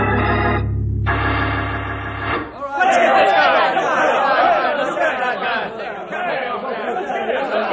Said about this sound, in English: What's wrong over there? What's the commotion?